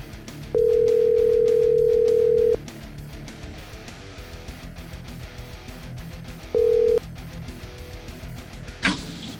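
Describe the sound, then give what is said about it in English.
A phone line rings out with a long, steady electronic ring tone as a call is placed to Kansas City, then a second brief one after a pause, over low background noise, ending with a sharp click as the call connects. “And, man, yeah, let's just see what's going on there and see if we can get him on the phone here.”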